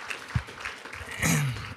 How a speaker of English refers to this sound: I think you guys have a great leader, and so let's give him a round of applause for just his faithfulness. Appreciate it.